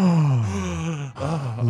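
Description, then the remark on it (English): A single voice performs a loud, drawn-out gasp of surprise, a voiced, breathy "ooh" that briefly breaks off and then swells again, alone with no talking. “And every boy in the room gasped.”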